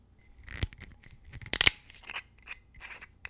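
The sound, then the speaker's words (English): A screw cap is twisted off an unopened standard 750 milliliter bottle of Ligne Aquavit, 41.5% alcohol: a series of soft scraping clicks, then a sharp, bright crackling burst as the seal breaks, followed by lighter rubbing ticks. No one speaks. “Nice screw cap, as expected.”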